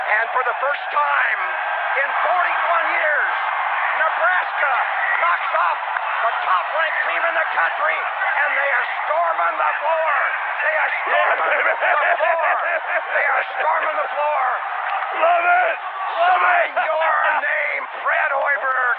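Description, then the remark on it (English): A dense arena crowd in Lincoln, Nebraska, roars and cheers without pause during a court storm after a win, heard over the phone, layered yells and whoops blending into a loud, steady wall of sound with a few sharper shouts rising above it. “Good thing that didn't happen during the court storm.”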